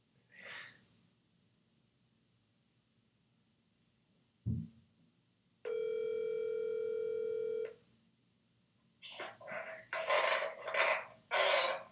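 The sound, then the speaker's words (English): A sharp thud as a woman hangs up both phones, then a loud, steady telephone dial tone droning for about two seconds and stopping abruptly, followed by bursts of noisy rustling. “Oh, she just hung up both phones.”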